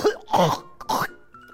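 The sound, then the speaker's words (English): A person sneezes in short, explosive bursts: a quick sharp one, then two louder breathy blasts with a hissy rush, followed by a faint steady hum. “You just fucking sneeze as I'm fucking...”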